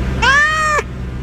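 A single drawn-out cat meow, clear, rising slightly and then holding before cutting off, over a steady low background hum.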